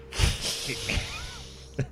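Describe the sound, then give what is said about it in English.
A person hisses like a cat in their sleep, a long, breathy hiss: a steady airy rush broken by a few soft snorting puffs and ending with a short sharp breath. “You cat hiss in your sleep.”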